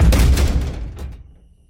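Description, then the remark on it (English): A wooden door slams shut with a single heavy, booming thud, its deep rumble dying away over about a second into quiet. “I bolted for it and slammed the door behind me, pressing my head to the wood.”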